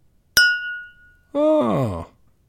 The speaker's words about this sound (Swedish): Och sen har vi alltså glasen som klingar.